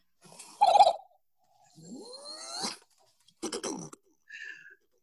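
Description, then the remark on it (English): A person makes a string of vocal mouth-noise sound effects: a sharp pop, a rising whooshing sweep, a buzzy sputter and a short high tone, each separated by brief pauses, clear with no talking. “I do have more of Larvell Jones' mouth noises”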